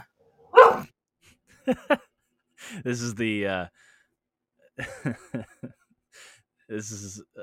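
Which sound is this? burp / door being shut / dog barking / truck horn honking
dog barking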